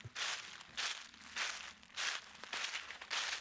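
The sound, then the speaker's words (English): Footsteps crunch through dry leaves and twigs in the woods, about six steady, evenly paced steps, moderately loud, with no voices. “I thought I heard a sound, footsteps or something.”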